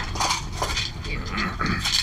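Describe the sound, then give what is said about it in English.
Dice clatter and rattle across a hard tabletop, a busy burst of sharp clicks and knocks that keeps going for about two seconds at a fairly steady loudness. “Has dice just go everywhere.”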